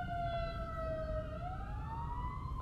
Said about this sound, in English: yes, those are sirens.